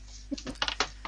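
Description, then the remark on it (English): Dice are dropped and clatter onto a hard surface in a quick series of sharp clicks and rattles, fairly loud, with no voices. The roll is for a shotgun shot in a game and comes up 8. “This doesn't bode well for the shotgun if you can't hold your dice properly.”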